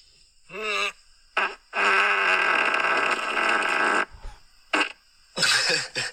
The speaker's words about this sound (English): Like, that's a lot of sound from one bump. It sounds like it's angry at something. Yeah. It's like a fart yell.